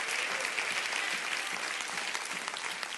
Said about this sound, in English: The Bible said in Psalms 150, "Let everything that hath breath praise the Lord. Praise ye the Lord." Clap your hands and rejoice in that today.